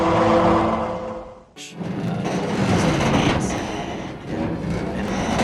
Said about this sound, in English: It sounds like a fire drill. I don't know what that is. It's like. Do you hear that loud metal creaking? Like it sounds like something's about to break.